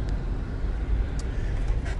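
road traffic passing

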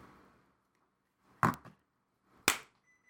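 hand clap

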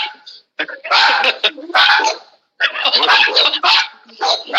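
dogs barking at passerby

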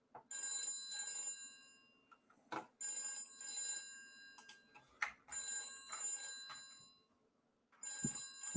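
telephone bell ringing

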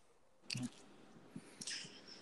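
dog chewing on something

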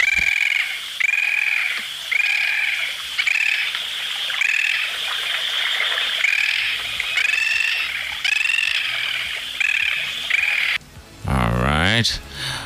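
bird call

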